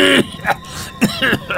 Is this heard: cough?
yes